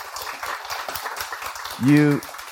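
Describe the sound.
An audience claps steadily in a dense, crackling wash of applause, and near the end a single voice lets out a loud, sustained whoop over the clapping.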